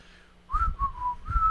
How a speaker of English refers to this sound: Don't whistle on that.